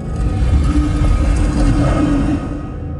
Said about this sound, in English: And you play out this little melody. And you all hear, as soon as you finish, a stone door opening up.